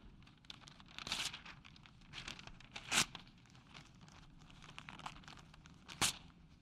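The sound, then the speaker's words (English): Paper being crumpled and torn, a continuous crinkling rustle broken by three sharp, louder rips spaced a few seconds apart, with no one talking. “The best way I know how to describe your life is like this piece of paper.”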